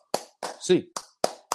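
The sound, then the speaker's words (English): Sharp hand claps in a UCLA eight-clap cheer, about six of them, struck in a quick, fairly even rhythm, with a short voiced sound mixed in between two of the claps. “Eight clap time, baby. And one, two, three, four, five, six, seven, eight.”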